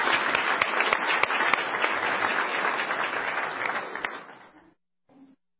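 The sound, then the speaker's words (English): An audience applauds the program's resources, a dense wash of many hands clapping at an even level for about four seconds, then fading out, with a faint short burst of noise just after. “So just a quick round of applause for the resources.”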